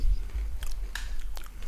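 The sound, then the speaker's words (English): Crunchy chewing of Cajun trail mix right against the microphone, with a few sharp bites and crackles over a low rumble; no one speaks. “Just chew right into the microphone.”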